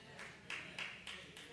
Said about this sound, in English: One person clapping. That's sad.